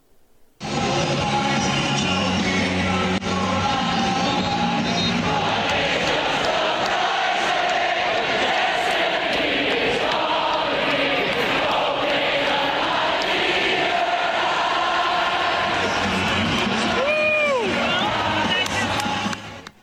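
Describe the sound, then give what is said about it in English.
A crowd of about 100,000 at the Big House, Michigan's football stadium, sings a familiar song in unison at a Michigan football game, a dense, loud wall of voices with sustained tones that holds steady for the whole stretch, with a brief rising whistle near the end. “The first one is the crowd at the big house singing a familiar song.”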